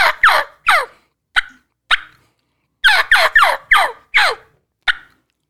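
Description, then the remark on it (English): Loud clucks and purrs from a turkey call: sharp, raspy notes in an uneven pattern, a few spaced singles, then a quick run of five, with no talking. “What is that right there you doing? Cluck and purr.”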